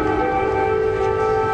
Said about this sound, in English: I will say it's totally plausible to me that they were like, hey, light up those sirens. It'll make a good photo op.